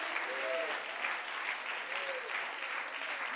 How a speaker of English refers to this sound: If you believe that, can somebody clap your hands and can somebody shout amen?